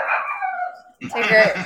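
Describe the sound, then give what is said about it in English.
A dog lets out a drawn-out, whining howl, then breaks into a burst of loud barking at someone standing outside the house, with voices chattering underneath. “Even the dog's like, I want to know.”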